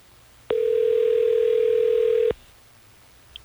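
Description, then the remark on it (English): A steady telephone dial tone hums loud for about two seconds as a call is placed from the Hot 101.5 radio show, then cuts off abruptly, leaving a quiet background with a faint click near the end. “Let's try to get Grace on the phone so we can figure this out.”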